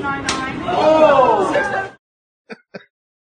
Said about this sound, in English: But it was a pretty good slap. The shortened down version.